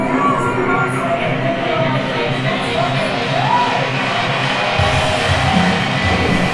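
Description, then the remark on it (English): A loud, dense crowd roars continuously for several seconds, a steady wash of cheering and yelling with scattered shouts and whoops rising out of the din, like an audience at a live music show. The audio is designed from crowd recordings sampled at shows, much of it from Mother. “Audio is designed by Alma, and it's sampled from crowds that of shows that the three of us, myself, Connor Biddle, and Alma Kelleher worked on together.”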